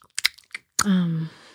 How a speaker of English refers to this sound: Okay, sorry. I got sidetracked by swallowing.